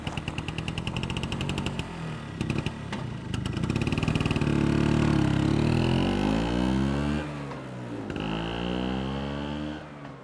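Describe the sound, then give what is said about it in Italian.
A Vespa scooter engine in Rome, setting off to see the island of Rome, putters rapidly at first, then revs up and settles into a loud, buzzing drone whose pitch rises and dips a few times. No one speaks. “Vieni, prendiamo la Vespa e andiamo a vedere l'isola di Roma.”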